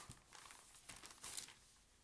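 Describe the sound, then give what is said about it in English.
Quiet crinkling of a piece of paper in short irregular rustles, with a sharper crackle near the end as the paper is handled while someone searches for a written note. No one speaks. “I wrote it down on a piece of paper recently.”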